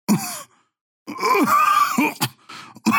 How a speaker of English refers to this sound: You see, she starts coughing and like black stuff kind of comes out of her mouth.